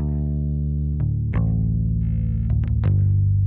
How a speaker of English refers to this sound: if I left it in standard tuning with the acoustic guitars in drop D, the first note played on the bass would be the higher D on the third string or the second string, depending which way you're looking at it. And it would sound like this.